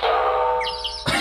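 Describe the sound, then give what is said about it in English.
A vocal imitation of the cartoon sound effect of a coyote being hit on the head: a steady, buzzy ringing tone with a twittering, bird-like warble on top, cut off by a short, rough burst at the end. “Why the coyote just got hit in the head.”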